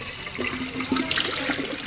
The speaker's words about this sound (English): In the town of Borjomi, locals line up beside a public fountain to fill up big plastic jugs of mineral water for free. I step in line and fill up my own water bottle.